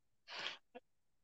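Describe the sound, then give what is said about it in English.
A single quiet sneeze: a breathy, noisy burst lasting about a third of a second, followed by a brief voiced catch, with silence on either side. “Bless you, brother.”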